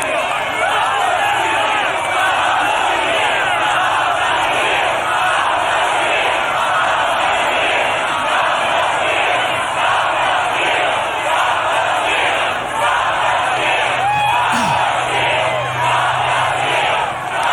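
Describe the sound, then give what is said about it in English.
A large rally crowd roars continuously, with cheering and shouting blending into a dense, loud wall of noise that holds steady for the whole stretch, rising slightly in waves. “The crowd has pretty much just had it at this point to where he gets into this.”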